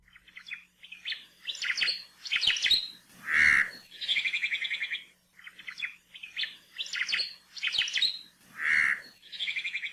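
An Oma'o (Hawaiian thrush), a gray and brown robin-like bird native to the rainforests of the Big Island of Hawaii, sings a loud song of rapid chirps, buzzy trills and clear whistled notes, the complex phrase repeated twice with brief pauses and no talking.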